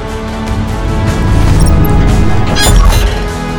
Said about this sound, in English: It's a spaceship, and it's here just for you. As the spaceship lands gently, you hear the door open.